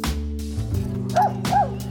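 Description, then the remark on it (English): A seeing eye dog gives two quick, high yipping barks about a third of a second apart, over a steady humming background. “He's not a pet. He's a seeing eye dog.”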